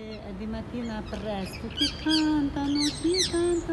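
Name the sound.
bird song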